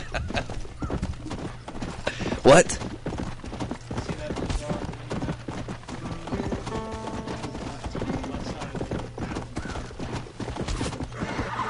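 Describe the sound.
Rapid hoofbeats clatter steadily throughout as a horse gallops in a video game, with a loud whinny bursting out briefly near the start and a person speaking over the drumming hooves.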